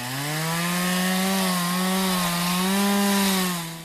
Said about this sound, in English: My apologies, I'm not fluent in chainsaw. Can anyone here translate? I've been learning chainsaw on my Babbel app. I think he's speaking a southern dialect, but I'll give it a try.